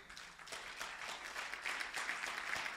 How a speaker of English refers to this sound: Clap for Jesus.